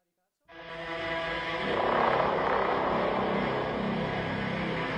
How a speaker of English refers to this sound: Oh. Is that a drone?